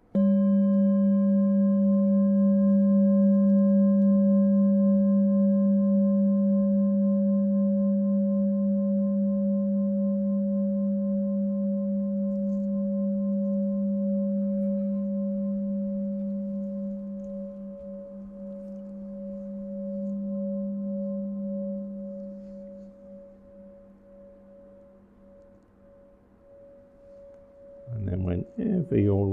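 A meditation bell rings once and holds a long, humming tone with steady low and mid overtones, slowly fading over many seconds before a brief rustle at the end.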